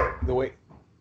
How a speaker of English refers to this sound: excuse my dog there. I don't know if you heard him